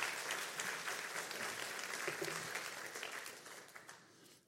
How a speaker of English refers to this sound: All right, let's thank them. You get one more clap.